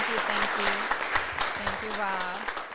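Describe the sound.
An audience claps steadily for nearly three seconds for a guest from Atlanta, a dense, even patter of many hands, with a few voices calling out and cheering over the applause.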